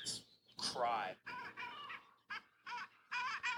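A run of short, squeaky honking calls from a small waterbird on the water, about six or seven nasal yelps in uneven succession, fairly loud, sounding like a clumsy goose call; heard among hedgerows and cornfields in goose season.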